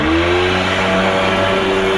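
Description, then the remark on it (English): A jet ski engine revs loudly and steadily, its motor whine climbing in pitch over two seconds with a rough, buzzing drone underneath. “No, it's not the latest jet ski variation.”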